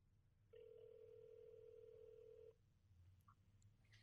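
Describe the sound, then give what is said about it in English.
A telephone ringback tone sounds once as an outgoing call rings, a steady two-second electronic burst heard clear over a low background hum, then stops. “Yeah, the call's not going through. Didn't realize it. Here we go. It's ringing in case you can't hear.”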